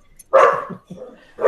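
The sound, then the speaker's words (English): A bull terrier named Francesca barks: a loud, harsh bark followed by a lower growling woof, then another sharp bark starting at the end. “Francesca the bull terrier.”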